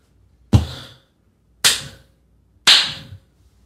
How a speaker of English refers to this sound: That's your clap.